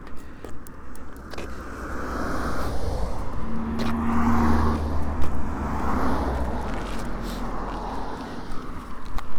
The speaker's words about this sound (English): Crossing the busy A3052.